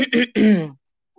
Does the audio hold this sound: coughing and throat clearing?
yes